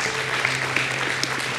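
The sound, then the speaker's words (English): Steady crowd applause, a dense wash of many hands clapping at once, loud and continuous with no voices on top; an audience gives a round of applause for people who have just prayed. “Can we give those people a round of applause?”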